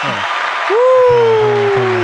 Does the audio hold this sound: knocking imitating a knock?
no